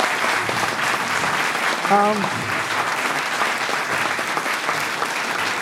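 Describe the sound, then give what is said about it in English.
Steady audience applause for all the debate participants fills the whole stretch, a dense even wash of many hands clapping, with a brief voiced whoop or shout rising out of it partway through. “Can I round of applause for everyone you saw?”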